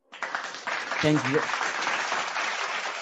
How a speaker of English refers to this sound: On behalf of all the Sport Analysis Network Football Crew, yes, I mean, I think you deserve an applause.